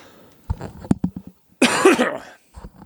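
A quick run of short, hoarse coughs, followed after a brief pause by one longer, harsher hacking cough. Nobody speaks.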